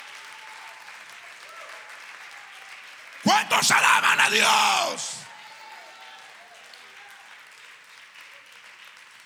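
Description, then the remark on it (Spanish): A church audience breaks into a loud burst of applause for the Lord, mixed with cheers and whoops, lasting about two seconds, after a man's voice speaks; quieter speech resumes afterward. “Denle un fuerte aplauso al Señor con el corazón.”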